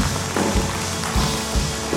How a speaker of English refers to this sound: Let's clap our hands and say thank God.